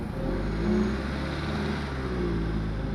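A car engine revs and accelerates as a limousine carrying a group of ladies speeds off into the night, a steady low mechanical rumble with rising harmonic tones, loud and continuous with no talking.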